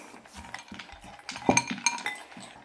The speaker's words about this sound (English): All right, so when you're ready, pick up your good handful of ice, drip over the bowl.